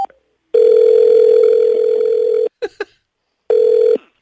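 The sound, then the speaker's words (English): A phone line rings on a call to a Japanese restaurant: a steady electronic ringback tone buzzes for about two seconds, a couple of short clicks follow, then a second ring begins and cuts off. Clear, with no voices. “I just called the Japanese restaurant and I asked for Bukkake.”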